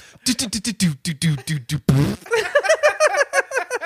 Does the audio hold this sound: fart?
yes